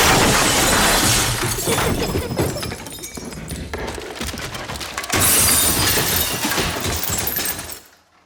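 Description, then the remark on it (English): Pictures crash down from a wall to the ground in a house as glass shatters, a loud, dense clatter of breaking lasting several seconds, easing slightly midway before a second burst, then cutting off abruptly. “All the pictures on the wall fall to the ground.”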